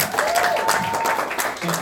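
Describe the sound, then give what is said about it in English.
A live jazz audience applauds musician Jerry Topinka, clapping steadily in a dense, continuous wash of applause that holds at an even level for a couple of seconds, with a faint whistle-like tone briefly rising above it. “Here we go, folks. Big round of applause, Jerry Topinka.”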